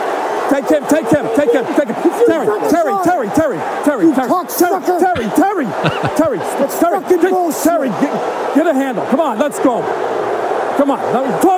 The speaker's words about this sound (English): Okay, so now you hear the crescendo of the crowd.